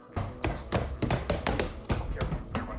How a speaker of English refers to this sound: What you're hearing now is the sound of Corey and I running up the stairs and down the hall to our room